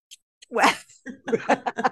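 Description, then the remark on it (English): A single loud, forceful, deliberate sneeze bursts out, followed by a quick string of short, choppy vocal bursts. “I sneeze as loud as I can.”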